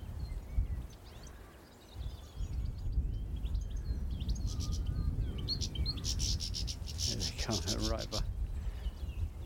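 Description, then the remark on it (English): Three goldfinches in a blackthorn bush give a bright, tinkling, twittering song with rapid rattling bursts, lively, over a steady low outdoor rumble of wind or movement. “the goldfinches, making the kind of rattling, tinkling song”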